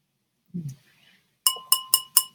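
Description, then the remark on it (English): A glass of wine being handled while drinking: a soft low bump, a brief pause, then four bright ringing clinks of glass in quick, even succession. No one speaks. “Yes, I do have a glass of wine with me.”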